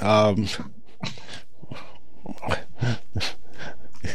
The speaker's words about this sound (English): what dog is that? That dog got in.